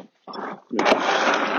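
Dogs growl and whimper, a brief low burst followed by a longer, rough, sustained stretch of noisy canine sound, fairly loud and with no talking.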